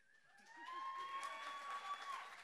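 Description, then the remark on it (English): A small cheering section in the back cheers and claps for a church mission team, steady, with a sustained high whoop riding over the noisy applause for a couple of seconds. “Got the cheering section in the back here.”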